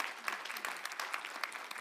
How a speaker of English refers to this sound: Amen. Yeah, give the Lord a clap. Absolutely.